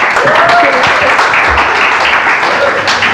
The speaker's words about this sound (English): Wow. Thank you. Wonderful. Should we just give a big round of applause